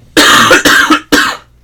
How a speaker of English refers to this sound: Hold on, I'm gonna cough.